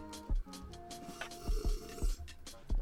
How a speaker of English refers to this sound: Wait, hold on, let me get a sip.